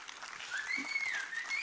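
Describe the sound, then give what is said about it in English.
A church audience claps steadily for the Lord during the offering, in a dense, continuous wash of applause, with a thin sustained tone gliding through it, like a held organ note or faint feedback, and no talking. “Let the basket come by as we applaud the Lord one more time in his house.”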